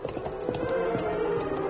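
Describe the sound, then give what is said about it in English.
Horses' hooves clip-clop in a quick, steady rhythm, a continuous run of crisp taps at moderate volume as a masked man and an Indian ride their horses, Silver and Scout, up out of a creek bed, with no voices. “As the masked man and Indian rode up out of the creek bed”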